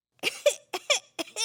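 A child's harsh, barking croup cough, four raspy bursts in quick succession with strained, wheezy catches between them, close and fairly loud, with no talking.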